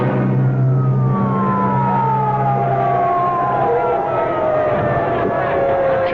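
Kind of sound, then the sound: vehicle, ambulance siren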